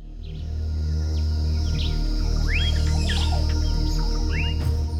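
A bird on a branch twitters in a series of quick, bright chirps and short upward sweeps, scattered irregularly over a steady low rumbling background that stays constant throughout.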